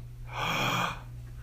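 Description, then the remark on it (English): A single breathy exhale, a soft airy rush from a voice demonstrating the breathing sound of the Hebrew word "Ahava", rising and fading over about half a second with no speech. “So ah, you exhale. And then you inhale.”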